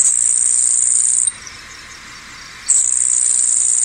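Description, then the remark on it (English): A grasshopper sparrow's song: a thin, very high, insect-like buzz, heard twice as long sustained trills separated by a brief pause, clear with no voices. “And here's the grasshopper sparrow.”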